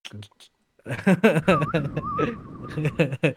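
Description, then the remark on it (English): A person whistles a thin, wavering tone for about a second, mixed in with voices talking and chuckling, after a few short sounds and a brief pause. “I actually can whistle very, very well.”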